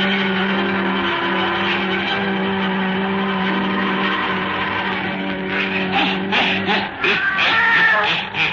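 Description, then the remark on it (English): A black cat lets out a long, drawn-out yowl, loud, holding a steady wavering tone before breaking into rougher, noisier cries near the end. “her wise black cat.”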